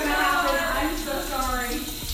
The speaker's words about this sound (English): was the one and only Sarah Saunders flushing the toilet